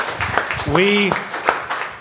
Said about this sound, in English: I've lived my entire life for a spontaneous round of applause.